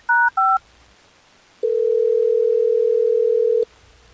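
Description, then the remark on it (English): Two quick dual-pitched keypad beeps as a telephone call is placed, then a pause, followed by a steady, loud ringback tone lasting about two seconds before cutting off abruptly. No voices are heard. “let's try to get her on the phone, Troy, so we can figure out why Madeline's blown you off”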